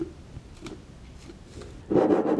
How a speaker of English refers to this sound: And then get out a canning funnel, or you can just make one using wax paper, parchment paper, or I have foil here. And I'm going to spoon our mix right into our jar.